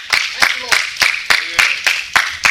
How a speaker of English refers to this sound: Hello, somebody. Somebody in here ought to give God a hand clap of praise.